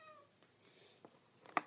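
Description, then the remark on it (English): A cat lets out a short, fairly quiet meow right at the start, followed by a few faint scattered clicks and a sharper brief noise near the end. No one speaks. “Fucking cat shit, man.”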